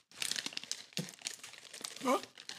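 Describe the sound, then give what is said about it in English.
Loud crinkling of a crisp plastic chip bag right at the microphone during a recording, a steady run of sharp crackles and rustles filling the whole clip, with a brief voice-like sound breaking through near the end. “He got chips in the mic. He got the fucking crumples in the mic.”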